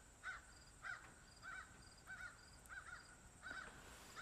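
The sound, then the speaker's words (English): Crows caw repeatedly, about seven hoarse calls in a steady, evenly spaced rhythm, faint against a quiet outdoor background with no one speaking. “Oh, the crows say hello.”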